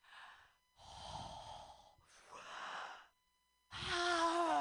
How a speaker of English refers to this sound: Of course. Let me finish my breathing exercises.